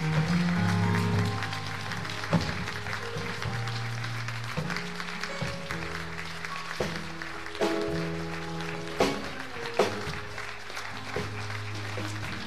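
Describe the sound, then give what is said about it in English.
An audience claps their hands in praise for the children who came up, a steady, dense patter, with sustained low musical chords playing underneath and a few sharper accents standing out. No one speaks. “give the children that came up here a hand clap of praise.”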